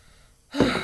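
After a near-silent moment, a sudden loud fizzing hiss bursts in and holds steady as seltzer is opened and poured into a mug, some of it spraying out.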